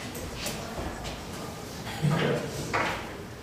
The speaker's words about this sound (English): Close the door.